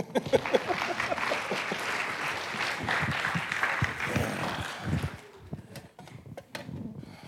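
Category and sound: crowd, audience clapping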